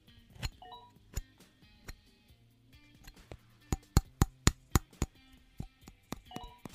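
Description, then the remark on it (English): An exclusive Moon Men aluminum card is banged metal on metal, clinking in a series of sharp, bright taps, scattered at first, then a quicker run of about six evenly spaced hits before trailing off. No one speaks. “Did I mention there's going to be an announcement about the exclusive Moon Men, this aluminum card? Listen to this.”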